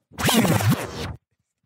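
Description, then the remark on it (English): A single scissors sound effect: a loud, scraping metallic snip that rasps for about a second, then cuts off into silence, with no talking. “And cut him out the deal completely. Scissors.”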